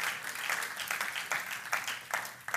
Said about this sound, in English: I wish you'd clap your hands if you believe that today.